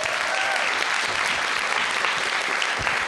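A crowd claps steadily and loudly, a dense, even wash of many hands applauding without pause for a few seconds, with no voices standing out.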